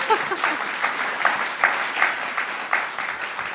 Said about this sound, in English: it is our great pleasure to welcome you to the 14th annual Penn World Voices Festival of International Literature. I feel like that needs some applause, yes.